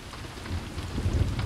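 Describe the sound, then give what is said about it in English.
Slow, steady, soaking rain falls continuously in a broad wash, with scattered drops pattering and a low rumbling undertone, heard from a porch; no voices are present. “Just me, on the porch, and that slow, steady, soaking rain.”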